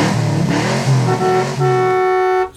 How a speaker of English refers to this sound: Even Ferrari mobility scooter drag racing.